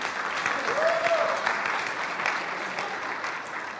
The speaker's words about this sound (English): Now, hey, in my church, I say, if we're going to clap, we all do it together. You ready? You want to clap? Go ahead.